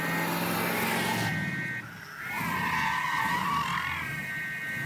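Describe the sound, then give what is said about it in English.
A car skids loudly with a long, sustained tire screech, its pitch wavering and dipping briefly midway before squealing on to a stop. No one speaks. “Hey, guys, I found the car. Hop in.”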